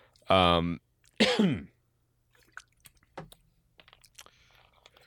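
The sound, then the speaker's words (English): Two loud coughs in quick succession, the second rougher and falling in pitch, followed by a few seconds of faint clicks and small mouth noises. “unrelated cough.”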